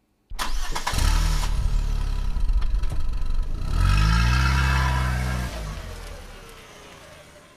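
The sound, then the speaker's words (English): A car engine cranks and catches, idles briefly, then revs up as the car pulls away, the rumble rising in pitch before fading slightly into a steady drive. “After her shower was over, Amu got ready and then they all left in the car to go to Mukul Kaka's home.”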